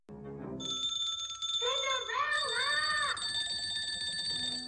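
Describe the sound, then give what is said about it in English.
Several service bells in a film scene ring insistently at once, a bright sustained jangle that carries through the whole stretch, with a voice briefly rising and falling underneath partway through. “Oh my god, those bells make me want to, like, and rip them off the wall and throw them into their faces.”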